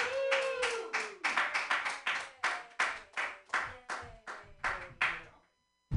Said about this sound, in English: Keep those hands clapping.